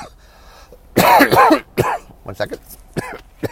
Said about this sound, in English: Coughing break.